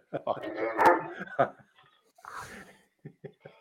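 dog barking and whimpering

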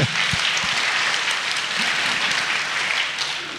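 audience applause

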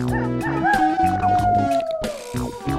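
wolf howling

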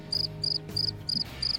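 cricket chirping sound effect

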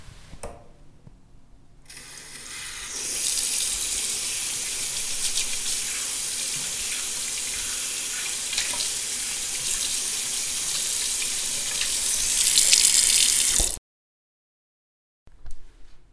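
water running

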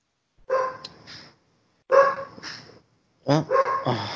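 puppy barking

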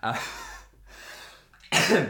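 cough

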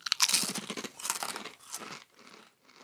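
crunching potato chips

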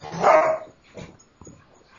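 dogs barking and fighting

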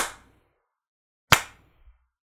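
slow clapping

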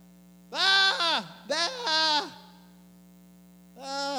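sheep bleating

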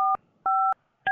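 telephone keypad dialing tones

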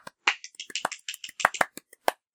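applause

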